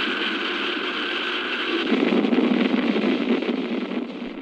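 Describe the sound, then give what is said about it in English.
A broad, steady roar of the main engines of a new experimental reusable space plane firing at launch, swelling louder and rougher after about two seconds into a deep, crackling rumble that holds strong without any voices. “We've gone for main engine start.”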